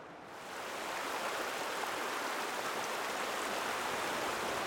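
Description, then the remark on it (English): A broad, steady roar of a glacier-fed mountain river rushing down a huge canyon, loud, rising in over the first half-second and then holding as a dense continuous wash with no voices. “looking at this canyon and how huge it is and the amount of water coming down this”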